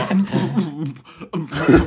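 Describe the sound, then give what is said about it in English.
A person seated on a plane makes muffled, stifled coughing and throat-clearing sounds, fairly loud, trying to hold in a coughing fit, ending in a sharper, breathier burst. “And I'm there just coughing like this, trying to hold it in.”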